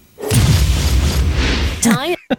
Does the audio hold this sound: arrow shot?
no